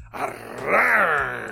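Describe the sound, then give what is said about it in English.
A person imitates a lion's growl, a single drawn-out, throaty groan that swells louder midway and slides in pitch before trailing off, with no other talking. “Yeah, this is okay, lion growl.”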